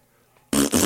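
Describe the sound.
After a moment of near silence, someone blows a loud, raspy mouth fart noise, a buzzing blat with a brief catch midway that keeps going to the end.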